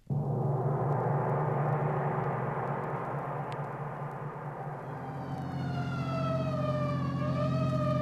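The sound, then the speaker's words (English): An emergency vehicle siren wails steadily and loudly, its pitch sliding up and down over a constant engine rumble, with no voices present. “So why this siren?”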